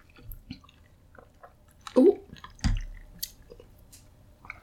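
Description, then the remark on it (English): Wet sipping of a fizzy drink made with Good and Gather Cran Blood Orange flavored sparkling water: small slurps and clicks of the mouth, with two louder gulping swallows partway through, and no talking. “I just drank a lot of stuff.”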